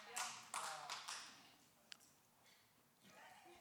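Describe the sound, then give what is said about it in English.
A lone person claps slowly, three soft, spaced-out claps about half a second apart, followed by a faint tap and quiet room noise. “If I didn't know you were with me, that would have almost sounded like the sarcastic clap. It was like, just like one person, you know.”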